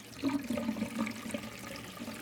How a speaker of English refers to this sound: when they entered the apartment, they noticed that they could hear water running from upstairs.